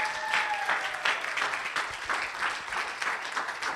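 An audience bursts into steady, dense applause, many hands clapping at once in a continuous roar that holds at an even loudness throughout, with a brief high tonal cheer at the start.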